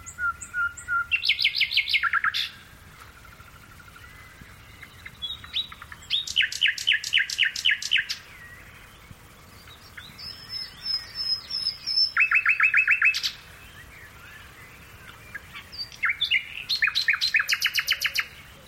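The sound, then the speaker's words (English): A nightingale, recorded by Philip Radford in Gloucestershire, England, sings alone in bursts of rapid, repeated notes and trills, each phrase a couple of seconds long with short pauses between, clear over a quiet outdoor background. “The British countryside is home to a vast array of creatures, but few whose song is quite as melodious as this nightingale, recorded by Philip Radford in Gloucestershire, England.”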